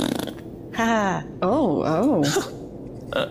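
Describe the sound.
A voice blows a buzzing mouth raspberry imitating a fart, two wobbly, pitch-bending bursts, the second longer and warbling up and down.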